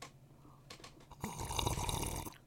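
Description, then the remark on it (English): A wet, breathy slurp of a drink, starting with brief sucking bursts and swelling into a loud, noisy gurgling draw that lasts over a second, with no talking. “Does anyone enjoy slurping?”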